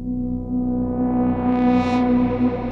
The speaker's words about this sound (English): And let me see here. Let me play a drone while we're waiting here.